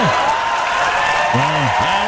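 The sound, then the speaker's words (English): A steady wash of crowd noise, an enthusiastic crowd sticking it to Mark Zuckerberg with dense cheering and clapping that holds at an even loudness throughout, with a few rising and falling voiced shouts cutting through near the end. “You hear that crowd, though? That was a crowd enthusiastic for sticking it to Zuckerberg.”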